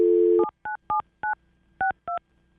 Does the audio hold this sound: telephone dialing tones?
yes